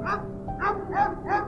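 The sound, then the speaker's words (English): Two farm dogs barking in answer to a train: four ringing, mid-pitched woofs at an uneven pace, fairly soft, over a steady low rumble in the background. “A farm dog answered the train, and then a second dog joined in.”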